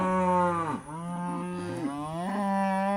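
Cattle moo loudly in a steady, drawn-out series of low bellowing calls, with pitch dipping and rising between calls and no talking, as the cows are herded from one end of a 50-acre cattle farm in Fulton, Missouri, to the other.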